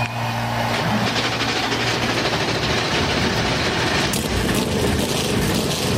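A dense, continuous roar of 40 race car engines firing up at once at the start of the Daytona 500, with over 100,000 fans in the grandstands, loud and steady throughout, with a low droning hum underneath in the first second.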